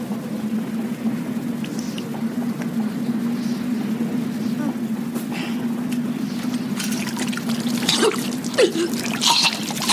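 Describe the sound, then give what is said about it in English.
A single sudden sneeze bursts out near the end, over a steady low hum and faint dripping, trickling water sounds in the background. “Bless you.”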